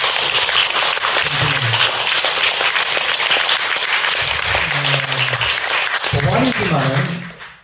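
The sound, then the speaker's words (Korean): A Buddhist audience applauds steadily for several seconds in honor of a senior monk, a dense, sustained wash of clapping, with a few voices faintly audible underneath before it tapers off at the end. “그 노고와 원력과 신심을 우리 다 함께 존경하는 마음으로 큰 박수 한번 쳐주세요.”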